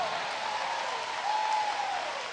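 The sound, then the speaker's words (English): A crowd claps hands in a steady, dense wash of applause, with a faint tonal line drifting through, loud and sustained throughout without distinct individual claps standing out. “Come on, let's clap our hands and praise.”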